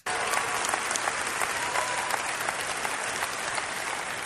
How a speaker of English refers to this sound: Oh, yeah, everyone's cheering. Oh, boy, yeah, that's right. Love this.